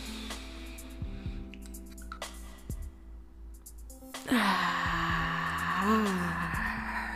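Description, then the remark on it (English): A single deep breath taken as a short deep-breathing exercise: a quiet, drawn-out inhale followed by a long, loud, rushing exhale, heard alone over a faint steady hum. “Just for a second, you know, let's just take a little breath, a little deep breathing, a little exercise, just real short, nothing, just one big huge inhale and exhale.”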